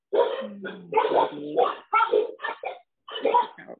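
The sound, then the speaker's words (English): Dogs bark and yelp in a run of uneven, overlapping bursts with brief pauses between them, fairly loud, with no one talking. “The dogs are joining the conversation.”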